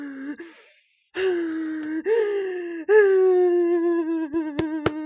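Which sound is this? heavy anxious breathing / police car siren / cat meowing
heavy anxious breathing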